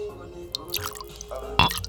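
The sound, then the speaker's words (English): Liquid poured out and splattering onto a hard floor in several irregular drips and splashes, with the loudest splash near the end, over a low steady background hum. “Wherever you are, I'm gonna pour a drink here for you, Soldier Love.”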